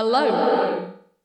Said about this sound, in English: it's called reverse reverb, and it takes a reverb that would be happening and plays it in reverse after your voice, and it's very strange, and it sounds like this.